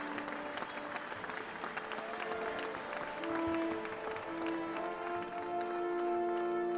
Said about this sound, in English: And you hear them all cheering for him as he motions for you to step up.